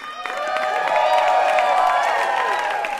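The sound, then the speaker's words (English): An Ask Me Another audience cheers and applauds the winner of a quiz game, with dense clapping under a wash of whoops and high excited shouts that swell quickly and hold at a loud, even level. “And the crowd goes wild for our winner”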